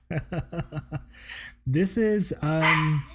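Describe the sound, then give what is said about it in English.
A dog fires off a quick, evenly spaced run of about six sharp, high-pitched barks, followed by a person's drawn-out vocalizing. “Even the dog is excited. Dog concurs.”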